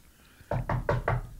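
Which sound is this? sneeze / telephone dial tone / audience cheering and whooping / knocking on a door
knocking on a door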